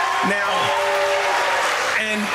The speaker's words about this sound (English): Now, wow, sort of a mixed reaction, huh? Like, half the audience was cheering and half was booing.